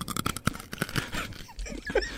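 A crisp crunching of food seasoned with nutmeg and thyme being bitten and chewed, several sharp irregular crackles in quick succession, then quieter chewing and faint rustling.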